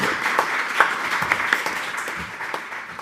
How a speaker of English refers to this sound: Give the panel a round of applause if you would, please.